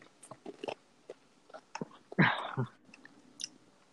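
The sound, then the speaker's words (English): A single short, throaty burp erupts, surrounded by faint clicking mouth and chewing noises; nobody speaks. “I just burped. That's not good.”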